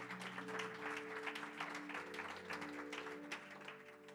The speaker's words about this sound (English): And I won't embarrass anyone, but round of applause for those people who are in the building.